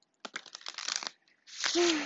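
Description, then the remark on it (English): Tarot cards from the Tarot Mucha deck being shuffled: a quick flurry of crisp papery flicks and taps, followed by a steady, loud rustling whoosh with a faint low hum underneath. No one speaks. “I'll be shuffling the Tarot Mucha, the tried and true.”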